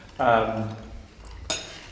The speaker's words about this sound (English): So anyway, as I said, we're all eating.